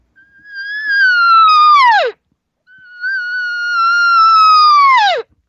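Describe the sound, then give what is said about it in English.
Two long, drawn-out cow elk mews, lengthened as a cow does when she gets no response, each a steady, slightly wavering high tone that drops sharply at the end, separated by a short pause. Loud and clear, with no talking. “Now, if that same cow was not getting any response, then she's going to lengthen it out.”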